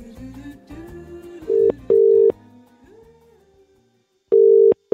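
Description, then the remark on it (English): An outgoing phone call to Broadsheet's national editor: the ringback tone purrs in steady, mid-pitched double bursts separated by a pause, loud and clear, while a soft musical background fades out beneath the first rings. “and I'm giving some of our friends a buzz to find out what they're cooking, eating, drinking, and doing over the summer break ahead.”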